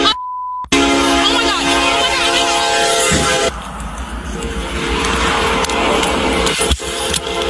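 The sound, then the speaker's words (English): After a brief steady beep, a loud train horn blares for about three seconds, then gives way to the heavy, continuous roar and clatter of the train rushing past, the train that hit police patrol car 346. “346 patrol car was just hit by a train.”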